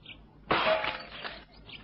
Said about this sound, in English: I think it better to break in through these windows. Stand aside. Leave this to me.